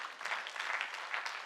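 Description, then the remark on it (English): An audience claps together after preaching in a dense, steady burst of applause that holds an even level throughout, with no voices over it. “That was better preaching than what you just clapped.”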